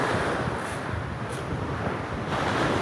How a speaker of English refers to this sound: And the waves crash.